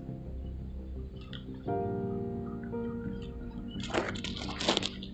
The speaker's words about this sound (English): I think I was distracted by this faucet over here. Don't get your microphone wet.